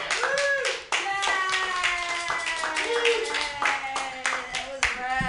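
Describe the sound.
A crowd applauds steadily for several seconds, a dense wash of many hands clapping at once, with voices whooping and cheering over the top.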